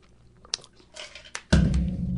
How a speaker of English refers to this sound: We're both taking sips of water.